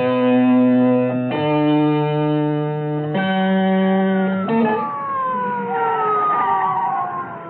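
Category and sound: vehicle, sirens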